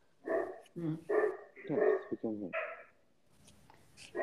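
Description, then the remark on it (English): Dogs bark loudly in a rapid, overlapping burst of several barks, then fall quiet, leaving only faint background noise. “My dogs are very loud right now.”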